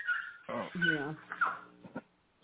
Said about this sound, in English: Oh, we got doggies. Dogs. Oh. Yeah. Here's my 90-pound lab dog.